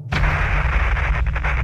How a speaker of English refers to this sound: An explosion in a spacecraft on its way to the moon. Okay, we've had a problem here. It rocked everything.